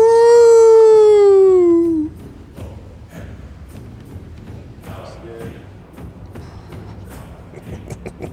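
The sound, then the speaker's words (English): A single loud, drawn-out howl slides downward in pitch for about two seconds, then fades into quiet room noise with faint shuffling and rustling. “And a nice big howl.”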